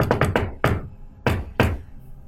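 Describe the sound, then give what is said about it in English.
Sharp knocking on a door: a quick burst of four knocks, a pause, one more, then two slower, heavier knocks, with no voices. “You hear knocking on the door.”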